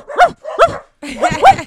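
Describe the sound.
A person imitates a dog barking into a microphone: two sharp, loud barks in quick succession, a brief pause, then a longer, rougher run of growly barking.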